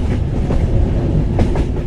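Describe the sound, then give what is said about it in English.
A very long electric train of 100 cars, almost 2 kilometers long, rumbles steadily along the rails of the Albula line through the Alps, with a dense low roar and periodic clickety-clack bursts from the wheels, loud with no voices. “Altogether, the electric train stretches almost 2 kilometers long. And this super long train went on a journey.”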